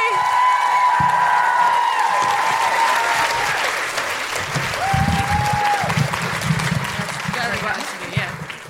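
Sustained applause from a large crowd at a show in Auckland, greeting the final act, a steady dense clatter of clapping with scattered whoops and shouts rising above it, loud throughout and tapering slightly toward the end.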